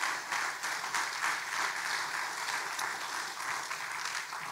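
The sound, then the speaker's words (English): A church audience applauds panelists steadily, dense overlapping claps forming a continuous wash of sound that holds at an even level throughout, with no voices standing out. “You can clap for them again.”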